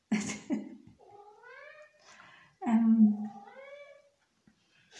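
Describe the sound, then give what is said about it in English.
A cat at a window meows several times in drawn-out, rising and falling wails, with one louder, longer yowl in the middle, after a couple of short sharp noises at the start. “oh, there's a cat at my window.”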